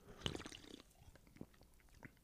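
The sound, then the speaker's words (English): A single sharp pop as a carbonated drink is cracked open, followed by a brief crackle of fizz and a few scattered faint clicks as it settles. “All the carbonation was in the pop. Nothing in the bubbles.”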